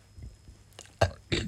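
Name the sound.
burp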